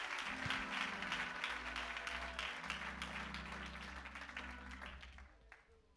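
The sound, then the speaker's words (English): A seated church audience claps their hands unto God in a dense, sustained burst of applause over a low organ chord, slowly tapering off toward the end. “One more time, as you're seated, will you clap your hands unto him?”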